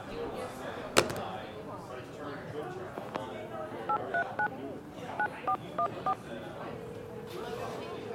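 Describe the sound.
Eight short keypad dialing tones on a bar's telephone, a quick group of three then five, beep clearly over a murmuring crowd of background voices, with a sharp knock shortly before.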